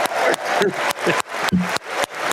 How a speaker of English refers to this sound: All right, let's stop clapping into the microphone.